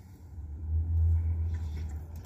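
A steady low rumble fills the inside of a car while someone eats pizza in it, swelling slightly midway and then easing off. No one speaks, and nothing else stands out above the droning hum.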